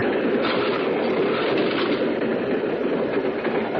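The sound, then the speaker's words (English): A train carriage rumbles steadily along the rails, a dense, continuous roar with faint rhythmic clatter woven through it and no voices. “It's a shame there's hardly anybody on this train”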